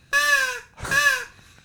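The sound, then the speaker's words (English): Two loud, close caws from a handheld crow call, each about half a second with a buzzy, reedy, kazoo-like tone, separated by a short pause. “We've also noted that the crow call sounds better at a distance. Okay. Like right here, it sounds like a kazoo.”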